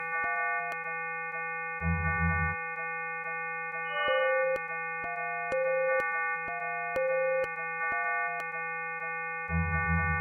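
Layered, steady pure sine tones, made with custom additive synth code that adds sine waves in various combinations, hum together while short synthesized beeping notes step up and down in a fairly quantized 4-4 rhythm, with scattered clicks and two brief low buzzing bursts; no voices.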